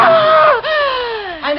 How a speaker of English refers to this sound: What happened? Why did you scream? He's come back.